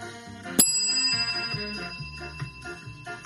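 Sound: bell ringing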